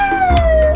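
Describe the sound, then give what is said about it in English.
A person imitates a wolf howl on the radio with a steady, loud, sustained note that glides slowly downward in pitch, with no talking. “give me your best howl.”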